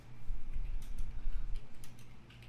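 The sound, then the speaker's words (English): Typing on several computer keyboards: a scattering of soft, irregular key clicks over a steady low hum, with no voices. “Please listen to all our keyboards.”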